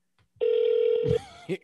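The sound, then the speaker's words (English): A single loud, steady burst of an outgoing phone call's ringback tone, a continuous electronic hum lasting under a second, followed by faint muffled voice sounds as it cuts off. “I swear, if he answered the phone like that, I will fucking die.”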